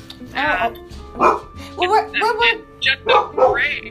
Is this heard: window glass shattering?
no